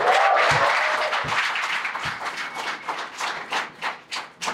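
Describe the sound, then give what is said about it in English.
A burst of audience applause for NBA player Jayson Tatum, dense and loud at first, that thins out into a steady run of separate, rhythmic claps as it winds down. No one speaks. “Can we get a round of applause for Jayson Tatum?”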